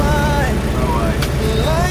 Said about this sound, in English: Here we are, in London traffic.